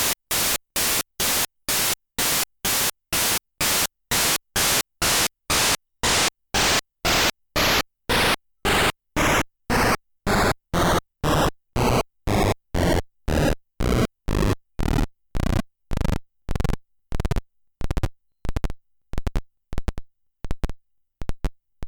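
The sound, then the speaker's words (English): A series of short bursts of harsh, hissy chiptune noise from a Game Boy noise channel in regular mode, each burst a step lower in pitch, evenly spaced and loud, descending from bright static to a dull rumble. “So on the Game Boy, you have over 30 pitches available per mode, so you really have over 60 different tones of noise available. Here's the regular noise.”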